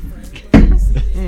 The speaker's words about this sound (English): What is that noise? It sounds like we're haunted. No, is that your beer glass? It's everyone's putting their stuff down. Oh, is there ghosts? That makes your wine glass sound so large.